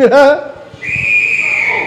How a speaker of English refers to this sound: No, whistle works.